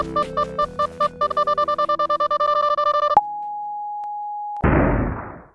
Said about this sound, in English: You spot the portal ahead just as you hear a warning alarm from your ship. The enemies have missile lock. You floor it, speeding towards the portal, your only way out as the missile alarm blares louder and louder.